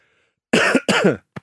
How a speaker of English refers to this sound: I actually needed to cough, I can tell you, from the moment I said he'd been Samoa fired. And then I was desperate to get it out and time it.